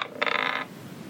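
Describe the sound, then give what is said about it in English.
A short clatter of dice rattling and tumbling across a tabletop, a quick burst of sharp, bright clicks lasting about half a second before settling, fairly quiet; rolled to decide whether a hammer attack in a game hits. “Dice gods, be kind.”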